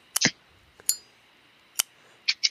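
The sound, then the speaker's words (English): A few sharp, bright metallic snips and clicks of a cigar cutter, spaced irregularly with quiet gaps, ending in a quick double snap. “Well, then I think it's time to go ahead and cut the cigar.”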